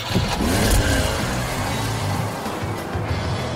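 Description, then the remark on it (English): A car engine revs hard and accelerates, a loud, sustained roar with rising pitch sweeps that settles into a steady drone. No voices are heard. “It was about 9 o'clock at night, and it's about a 2 hour ride, and we were speeding on Route 17. We were going 100 miles per hour, perhaps more.”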